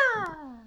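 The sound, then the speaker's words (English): A single drawn-out meow from a cat in a park by day as it grows cloudy, starting high and sliding steadily downward in pitch before trailing off, with no talking over it. “Is that a cat or an...”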